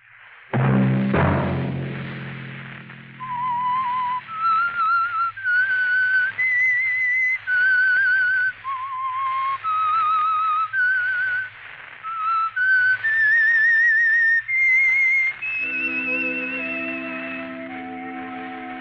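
The whistled theme signature of the Signal Oil radio program The Whistler: a lone whistled melody carries a slow, wandering theme of sustained notes, clear, framed by a swelling orchestral chord at the start and a sustained one returning at the end.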